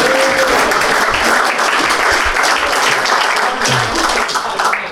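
crowd cheering

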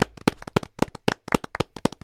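round of applause

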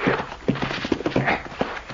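horses clip-clopping

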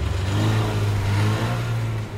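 car driving

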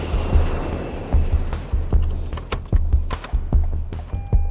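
airplane landing

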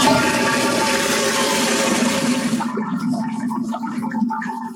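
toilet flushing

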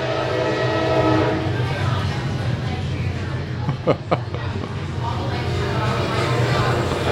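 train passing by

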